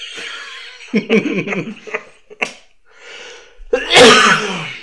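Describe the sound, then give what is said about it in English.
A single loud, harsh, painful cough bursts out near the end, preceded by some brief murmured vocal sounds and a short pause. “That's the last cough.”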